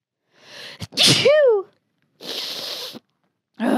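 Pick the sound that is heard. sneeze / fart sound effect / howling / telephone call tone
sneeze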